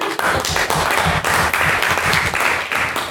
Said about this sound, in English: But applaud him.